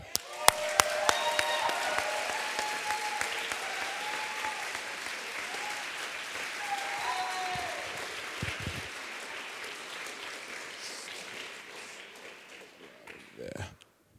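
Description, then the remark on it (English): An audience at a poetry reading applauds a poet coming up to perform, steadily for about fourteen seconds, dense clapping with a few sharper claps at the start, a few cheers woven in, slowly thinning toward the end. “So every poet that comes up here gets your absolute applause and love.”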